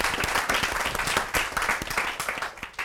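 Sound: round of applause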